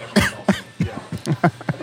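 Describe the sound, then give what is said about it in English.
A run of short, harsh coughs, about six or seven bursts in under two seconds, loud and irregular with brief gaps, like a fit of throat-irritated coughing, after eating spicy salsa. “I'm going to start to cough.”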